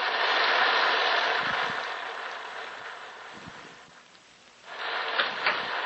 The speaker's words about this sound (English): Look ahead. There's the house. And the rain. Look at the rain. Yes. Red rain.